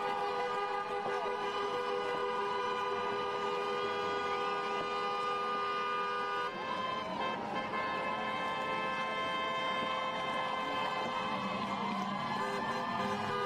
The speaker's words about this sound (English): Yeah, a lot of people gathered there, and a lot of folks were coming by, and I'm assuming that they were honking their horns in agreement with what was going on.